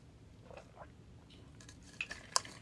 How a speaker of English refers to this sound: Hold on a second. I'm going to take a sip of water here so I can try to get rid of these hiccups.